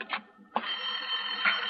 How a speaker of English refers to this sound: Lorna, there's a phone.